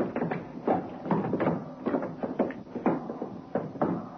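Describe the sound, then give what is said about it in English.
Quick, uneven thuds of running footsteps cross the dance floor in the main room of a club as a second intruder runs to catch up to the first. They bunch together into a confused flurry of bumps and shuffling as a scuffle breaks out, with no talking. “Suddenly, the second person broke into a run, caught up to the first...”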